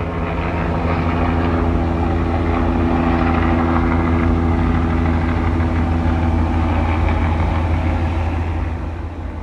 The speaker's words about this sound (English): Helicopter's messing with my train of thought. Fuck, what was I saying? The fucking helicopter just destroyed my... Train of thought.